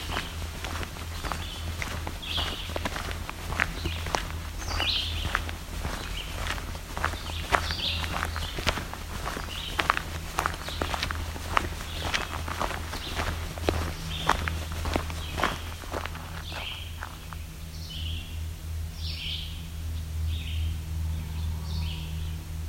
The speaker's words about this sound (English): Some red-eyed vireos.